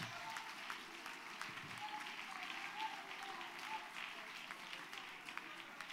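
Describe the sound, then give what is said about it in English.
An audience claps steadily to give the Lord praise after a prayer, the dense patter of many hands forming a continuous, fairly loud wash of applause with no pauses, while voices murmur faintly underneath. “Come on, just clap a little more fervently.”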